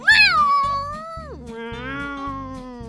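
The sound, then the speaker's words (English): A cat lets out one long, drawn-out meow that starts high and slides down into a lower, wavering yowl, loud, over a steady low pulsing beat. “The cat chased Dot home”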